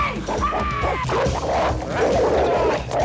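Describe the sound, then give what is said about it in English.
A big pit bull barks and yelps loudly as it is picked up, thrown to a man and punted, a high whining yelp giving way to frantic, overlapping barks and scuffling noise that fill the whole three seconds. “Bodhi picks up like a pit bull and a big fucking pit bull. Throws it at Johnny, who catches it and then punts it.”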